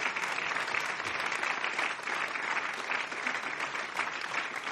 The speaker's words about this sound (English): Can I get a good round of applause for that?